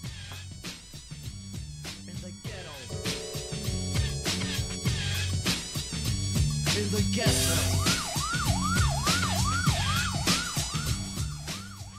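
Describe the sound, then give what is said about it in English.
A busy song plays, and partway through a wailing siren enters, sweeping up and down in quick repeated arcs over the dense instrumental backing until the end. “I heard the sirens in a song”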